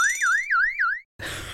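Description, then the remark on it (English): A loud electronic alarm sound effect, used as a 'Greg alert' jingle, warbles up and down in about four quick sweeps, then cuts off for a brief gap before a harsh burst of noisy static. “Greg alert as an alarm, and I'll make it into a jingle.”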